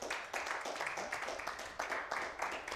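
An audience claps together, a dense, steady patter of many hands with slight rhythmic surges, fairly soft overall and lasting the whole stretch without any talking.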